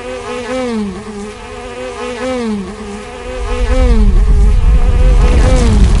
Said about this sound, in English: The earth shifts suddenly, and a crack forms underneath a buzzing beehive.